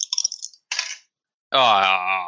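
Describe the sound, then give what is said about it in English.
Two dice rattle and clatter across a table during a tabletop role-playing game, landing on two ones, in a quick series of sharp, bright clicks, then a short scraping burst, before a loud sustained voice cuts in. “Because I rolled 2 ones and I have -1 weird.”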